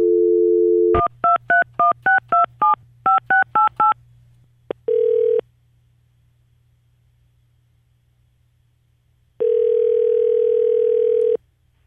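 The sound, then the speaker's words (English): A phone call to the Best Western River Terrace hotel in Sheboygan: a brief dial tone gives way to a quick run of about eleven touch-tone beeps, then two long, steady ringing tones separated by a pause, over a faint line hiss. “So I decided let's try the Best Western in Sheboygan. Let's see what happens.”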